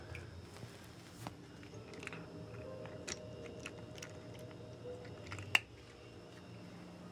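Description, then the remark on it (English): A cat, Captain Meiji, eating a treat from her dish: quiet, irregular crunchy chewing clicks scattered over a steady low hum, with one sharper, louder click near the end. No one speaks. “Happy kitty noises means the episode has come to an end.”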